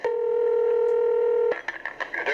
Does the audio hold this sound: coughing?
no